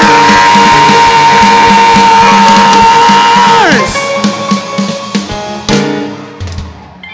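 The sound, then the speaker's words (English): A church audience shouts and cheers loudly, the dense roar holding a long sustained high note that slides downward midway, followed by scattered whoops and shouts as the noise eases slightly. “Some of us, we like the shout.”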